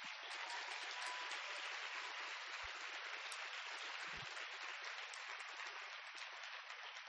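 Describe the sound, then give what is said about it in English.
A crowd applauds steadily, a dense, even wash of many hands clapping that holds at a constant loud level for the whole stretch, with no voices breaking through. “A big round of applause.”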